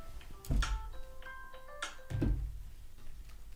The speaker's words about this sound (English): It's an alarm because I'm dumb. I should turn them off now, but I'm not. They're just going to keep going.